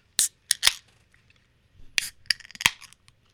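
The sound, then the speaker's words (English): A beer bottle being opened: a quick run of sharp metallic clicks and scrapes from the cap, ending in a bright glass clink, with no talking. “Oh, there's a clink.”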